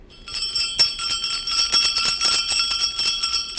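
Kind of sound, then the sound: sound effect, sleigh bells jingling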